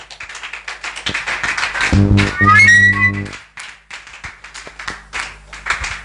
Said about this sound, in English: If that clapping was for me, it was too much. But even for Jesus, then it is too small.